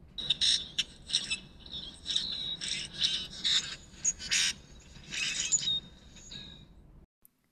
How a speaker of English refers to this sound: Those are grackles. For those of you who aren't aware, this is what a grackle sounds like.